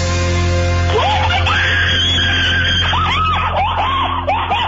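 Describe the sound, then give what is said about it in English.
A woman screams in excitement after winning $8,000 by guessing a bullseye number, with a series of high, rising-and-falling shrieks in quick bursts over a steady low hum, loud, with no clear words. “you'd think that was the scream from a haunted house or something from Halloween. That wasn't. That was …”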